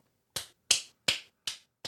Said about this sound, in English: Why are you encouraging that? Why are you clapping for that?